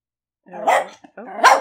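Two loud barks from the pepper dogs, the second a bit sharper, separated by a short pause with a tiny yip-like sound between them.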